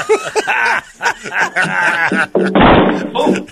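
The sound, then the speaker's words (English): A single sharp thud of a little kid hitting a glass door cuts through excited chatter, with voices talking and chuckling before and after the impact. “Next one is an episode of Door Window, but with a little kid.”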